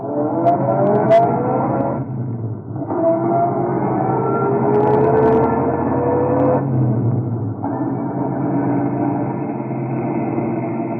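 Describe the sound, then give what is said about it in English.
A car engine revs and accelerates, shifting up through several gears as it drives off, staying loud throughout with no voices. “I climbed into my car and went away.”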